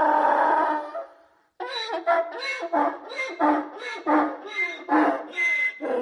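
A donkey brays loudly: one long harsh call, a brief pause, then a rapid series of rhythmic, hiccuping hee-haw bursts, with no one talking.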